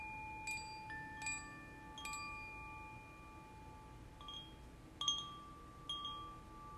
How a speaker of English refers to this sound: We'll begin and end the practice with the sound of the chime.